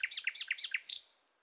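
A nightingale sings a quick run of bright, repeated chirping notes in a steady rhythm, clear, ending after about a second with no voices present.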